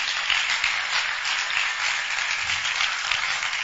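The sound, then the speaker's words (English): An audience claps for Jesus together in a steady, dense burst of applause that holds at an even level throughout, with no voices heard over it. “I think it's a good place to clap for Jesus.”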